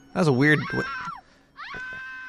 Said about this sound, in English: What the hell happened in there? I left... I didn't see anybody in that room, and I just heard... did you hear that lady screaming? Oh, wow, I'm freaked out.